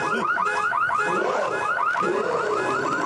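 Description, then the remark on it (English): A car alarm whoops in a rapid repeating cycle of rising electronic tones, loud and steady, with a shifting warbling pattern toward the end and no voices. “Oh shit, he got your car, Tony.”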